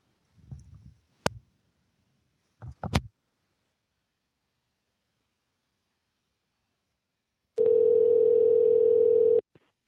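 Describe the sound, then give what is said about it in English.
A few soft clicks and handling bumps, then a loud, steady telephone dial tone hums unbroken for about two seconds before cutting off abruptly, as a phone call is placed. “Okay, can you just just whisper to me in the chat window your number, and I will call you on the phone.”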